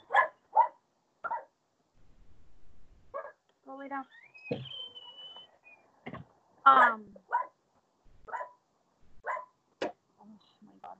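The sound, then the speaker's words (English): Several dogs bark in short, sharp bursts at the speaker's dog, with a few higher yips and whines mixed in, while a person speaks briefly between the barks, calling the dog inside. “So the way that I, you know, for example, hold on, let me put my dog inside because they're just going to be barking at my dog.”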